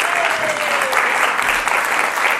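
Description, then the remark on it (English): An audience applauds steadily, many hands clapping in a dense, continuous patter at a fairly loud, even level throughout, with no voices standing out. “That wasn't me telling you to clap me.”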